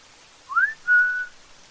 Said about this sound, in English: While I was peeing, I heard someone whistle at me.